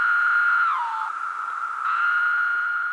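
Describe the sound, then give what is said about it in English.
The call of a large periodical cicada, Magicicada septendecim: a loud, steady, buzzing whine that slurs downward in pitch, fades, then resumes at its original pitch, alone with no voices. “The large species of cicada, Magicicada septendecim, it's the one that has the call that sometimes is referred to as the sound of the word.”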